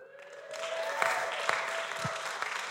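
An audience claps steadily in a dense, sustained round of applause, with a few sharper individual claps standing out and a faint steady tone running underneath.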